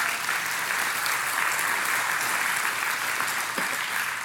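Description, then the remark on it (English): A crowd claps steadily, giving the Lord a hand clap, a dense, even wash of many hands with no individual claps standing out, holding at a constant level for the full few seconds with no voices. “So many of you others, yeah, you can give the Lord a hand clap, that is good.”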